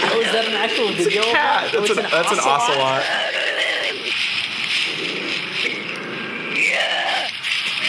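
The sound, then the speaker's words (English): An ocelot, in a video called Big Cats with Big Catitudes, gives a run of wavering, voice-like yowls that sound like a man, fairly loud, during the first few seconds, then only steady hissing background noise remains. “That's an ocelot.”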